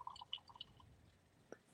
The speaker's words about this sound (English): Ooh, that sounded like a good pour. Shit, hey, that just sounded great.